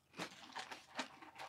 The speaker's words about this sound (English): How loud is that chewing? It's so loud in my ears. I don't know if I want it loud.